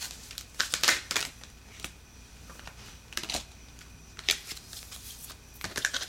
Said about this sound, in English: So then, I'll shuffle. Until I feel like I should stop.